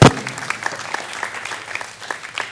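An audience claps steadily, a dense wash of many hands with scattered sharper claps standing out, beginning with a brief louder burst and holding at an even level throughout.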